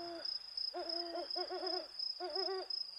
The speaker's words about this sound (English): The only thing we could hear was the distant hooting of annoying owls.